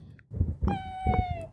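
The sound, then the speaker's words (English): A single drawn-out, meow-like cry that slides downward in pitch, made by a person's voice imitating a cat, over a low rumbling background. “Bro, you sound like a cat.”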